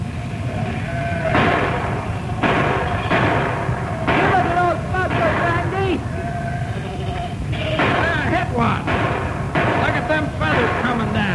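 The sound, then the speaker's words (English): A barrage of rifle shots fired skyward at eagles by two brothers protecting their lamb flocks, loud sharp cracks bursting every second or so over a steady rumbling background, with wavering bleat-like cries mixed in between the volleys. “Right now, Biff and Andy Bruce are using their rifles like anti-aircraft guns as they pour out a barrage of hot lead into the sky.”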